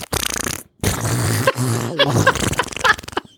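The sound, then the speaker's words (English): A voice imitates squawky, duck-like fart noises in a few loud, raspy bursts with buzzing, wavering pitch and brief gaps, with no ordinary speech. “And also, like, a lot of fart noises come out, and this is like...”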